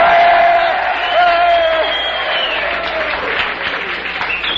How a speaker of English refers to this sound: Yes, ladies and gentlemen, the candidate is now approaching the platform. The demonstrators are marching back and forth. This looks like it's going to be a landslide. They're beginning to cheer again.